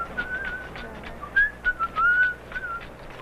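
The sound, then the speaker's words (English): A healer whistles during a healing ritual, a wavering, melodic tune of several short phrases rising and falling in pitch, clear with no talking. “He not only rattled, but he whistled.”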